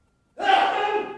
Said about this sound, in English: Bless you. Is that a subtle way of telling me I have to stop my sermon?